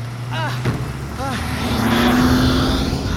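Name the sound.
car driving away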